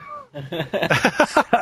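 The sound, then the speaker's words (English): A voice mimics the startled meow of two cats, scared by a person's loud cheer, with a short, descending wail, followed right away by a run of rhythmic laughing bursts. “And both my cats just went, wow!”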